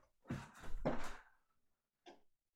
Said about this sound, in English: Well, I guess not his car door, but I swear I just heard a door. Maybe he really left.